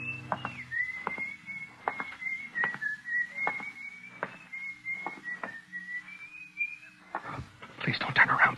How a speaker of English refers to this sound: My mouth was so dry, I wondered for a few seconds how that guy had been able to whistle, you know, the way you do.